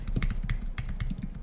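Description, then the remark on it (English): Rapid clatter of typing on a computer keyboard as someone searches eBay, steady, with quick irregular keystrokes packed densely over a low background hum. No voices. “You can hear me typing, so it's legitimate.”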